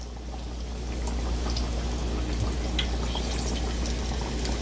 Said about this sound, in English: Now, when you're frying, of course, when you're doing it in a pan like this, you don't want to crowd the pan because it'll drop the oil temperature. So don't put too many in there.